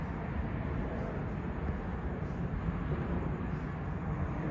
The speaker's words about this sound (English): Oh, there's a plane taking off. Let me see where the plane takes off under them.